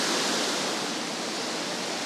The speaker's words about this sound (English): Oh yeah, there we go. The waterfall is actually looks pretty strong. The water is flowing very fast.